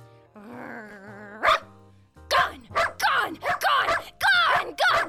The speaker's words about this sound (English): Mrs. Crisp, find a way to calm down your dog. This noise is creating unacceptable living conditions